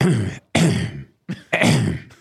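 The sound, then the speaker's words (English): A man coughs several times close to the microphone, four harsh, throaty bursts in quick succession with short gaps between them, loud and up front with no talking. “That doesn't actually so make now, you cough.”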